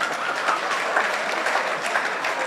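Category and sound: crowd, audience clapping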